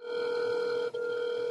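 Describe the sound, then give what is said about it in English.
A steady electronic telephone ringing tone heard down the line, a continuous buzzy note with a brief dropout near the end, fairly loud and with no voices. “It's a good sign, it's ringing.”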